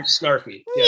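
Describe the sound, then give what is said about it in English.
A person's voice briefly imitates a cat's meow in the manner of Snarf from the Thundercats, a short, fairly loud nasal vocal glide with a brief pause before a rising final sound. “Like, it's like, meow, this place doesn't serve me martini.”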